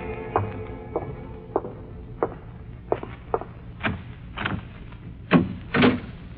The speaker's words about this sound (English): Then I heard approaching footsteps.